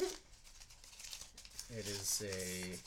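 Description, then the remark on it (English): Crisp crinkling and rustling of a piece of paper being unfolded runs throughout, with a person's voice briefly murmuring over the later part. “It's a piece of paper.”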